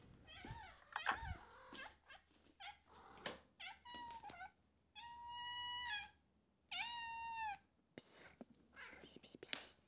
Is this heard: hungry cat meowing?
yes